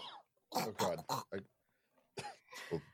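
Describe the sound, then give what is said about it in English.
A voice fakes a fit of coughing, mocking another person's coughing: four or five short, loud, exaggerated cough bursts in quick succession, then a pause and a couple more drawn-out vocal coughs. “It was me making fun of you coughing.”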